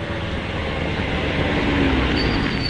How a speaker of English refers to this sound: There's a car coming. I saw the headlights catch the top of the trees. Yes. It seems to be coming up to the gates.